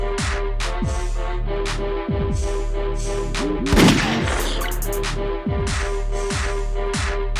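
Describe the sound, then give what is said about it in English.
Gunshot sound effects crack over a steady hip-hop beat with booming kicks and sustained synth tones, a dense burst of shots landing midway through the loop. “Gunshot, self-gunshot.”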